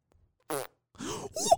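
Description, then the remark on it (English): A short burst of mouth-made fake fart noises, a brief buzzy blurt followed by two longer sputtering, rasping raspberries, loud with no talking. “Did that sound like a real guy farting or what?”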